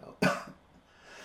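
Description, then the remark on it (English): A single sharp cough from the speaker bursts out, loud and abrupt, followed by a brief softer rasp and then near silence. “I'm coughing tonight, sorry.”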